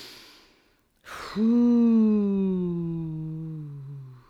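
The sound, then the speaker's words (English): A soft breath, a brief silence and a quick inhale, then a single loud, steady hum made on the out-breath, held for about three seconds, its pitch sinking gradually as the breath runs out. “And then a hum on the out breath.”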